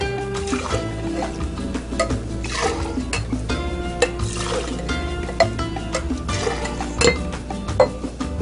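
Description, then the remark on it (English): A cocktail of coconut rum and triple sec being stirred or mixed, with repeated glassy clinks and clatter over a steady background hum, moderately loud, with no one talking. “So we're going to get that a mix.”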